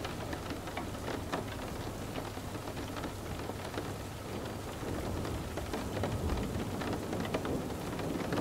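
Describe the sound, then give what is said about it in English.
Steady rain falls without pause, with scattered raindrops tapping on a surface and a low rumble of thunder underneath; no voices. “Gentle tap of each raindrop now translates into stronger sensations of comfort, sending your body deeper into a state of bliss.”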